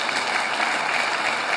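A crowd claps in a steady, dense round of applause that holds at an even, fairly loud level for the whole moment, with no voices rising above it.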